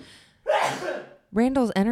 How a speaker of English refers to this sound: I'm going to sneeze.